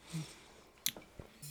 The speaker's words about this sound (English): Well, I'm drinking a little water, first of all. Oh, I got to hydrate. Keep the kidneys working.